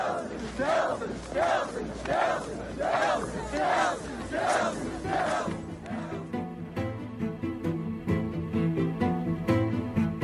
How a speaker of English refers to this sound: Yeah, and they were, it was weird in this video, there was footage of the crowd going, Trump, Trump, Trump, and it is exactly like the...